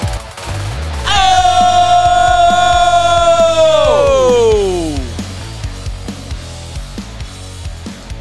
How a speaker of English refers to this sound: Oh! It really varies whether or not I'm going to say Ayo or just Yo. Just noises at this point. Yeah, it's kind of yelling. Just excitement. Kind of the point.